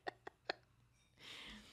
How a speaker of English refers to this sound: Belching like a little kid. And it's amusing me.